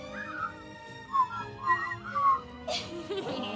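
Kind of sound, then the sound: human body sound, people whistling a tune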